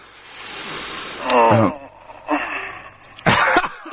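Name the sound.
yawn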